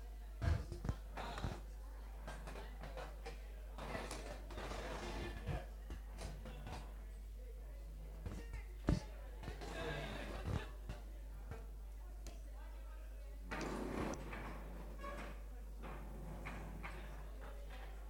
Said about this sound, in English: Please move the chairs. You can go and sit in chairs. You can move chairs, please. You don't have to keep them in rows. You can move chairs all over the place, get into a little Christian circle.